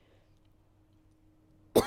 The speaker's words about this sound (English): Sorry, I can't stop coughing.